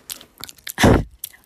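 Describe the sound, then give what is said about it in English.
Wet chewing of gum with smacking mouth noises: several short clicks followed by a louder, sustained squelchy chew, then another quick smack, with no talking. “I'm sorry, that's gross, I know, but, like, I haven't chewed gum in years.”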